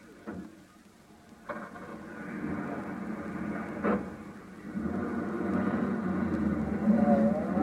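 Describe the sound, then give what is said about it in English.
A taxi's engine hums and rumbles steadily as it drives along, following a gray chauffeur-driven sedan, with a few sharp clicks and knocks scattered over the continuous low drone. “Yeah, that gray sedan with the chauffeur. Follow it.”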